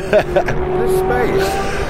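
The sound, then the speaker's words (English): A Porsche 944 driving, its engine holding a steady, moderately loud drone with a slight rise in pitch, with brief indistinct voices near the start. “It's a very generous car, the Porsche 944.”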